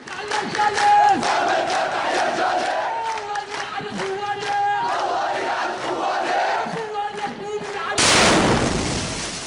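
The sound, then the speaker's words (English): A large crowd in a funeral procession carrying a body aloft, on July 3rd, chants and shouts in loud, rhythmic unison for several seconds, then a sudden, powerful explosion erupts near the end and drowns out the voices with a broad roaring blast. “It's called Explosion Rips Through Funeral Procession.”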